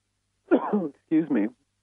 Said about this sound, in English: bad time for a cough here.